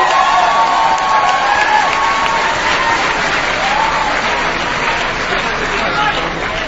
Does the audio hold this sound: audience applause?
yes